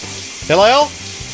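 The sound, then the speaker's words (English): Shower water runs in a bathroom in a steady, even hiss throughout, with a short rising voice-like call briefly cutting through in the middle. “I need to turn on the hidden microphone in the shower.”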